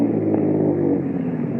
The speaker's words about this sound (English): A car comes around a curve. Slows up.